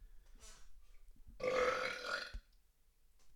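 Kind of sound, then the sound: human body sound, burp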